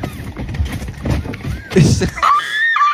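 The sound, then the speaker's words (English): A woman in her car screams and shrieks after eating extreme sour candy, loud frantic yelps and wails rising into high, wavering squeals over about three seconds, with breathy gasps between outbursts. “She's in her car. Freaking the fuck out.”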